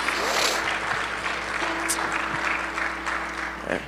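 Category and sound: crowd, audience applauding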